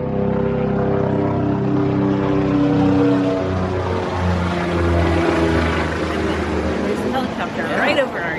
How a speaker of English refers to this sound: yes, there's an overflying plane, helicopter.